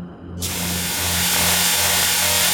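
A car engine runs steadily, its low droning hum joined moments in by a loud, rushing roar that holds constant to the end, with no voices.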